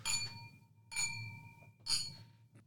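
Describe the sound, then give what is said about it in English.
Three bright glass clinks ring out about a second apart, each with a sustained high tone that fades slowly, as glasses of old red wine are touched together in a toast, with low background rumble. “Let's rip in. Cheers, boys. All right, cheers, boys.”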